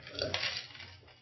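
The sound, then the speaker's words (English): A glass of water is handled, with a bright clink against a hard surface and soft sloshing and rustling noise for about a second, with no talking. “Ooh, time for water.”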